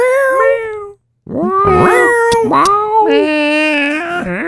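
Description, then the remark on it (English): A series of loud cat meows with rising and falling pitch, one drawn-out call, a brief pause, then several more wavering, whiny meows in quick succession. “If it was you and like it would probably be like a little cat's meow.”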